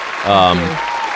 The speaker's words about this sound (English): That's an awesome success story. You deserve a round of applause for that.